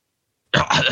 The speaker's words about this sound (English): Clearing my throat right there.